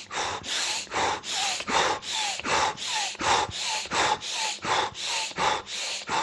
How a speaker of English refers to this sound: so one of the techniques that's in Indian, in pranayama, that's used to kind of kill bacteria, fungi, viruses, and flush out the system, like detox, purify the blood, basically, it's called, is Bhastrika. Okay, Bhastrika is breathing like this.